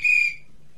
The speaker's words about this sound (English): Blow the whistle.